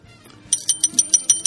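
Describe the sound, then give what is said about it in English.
A quiz buzzer goes off for question number five in a rapid, bright, bell-like trill of about seven quick pulses, fairly loud, with no talking over it. “Number five, buzzer's ready.”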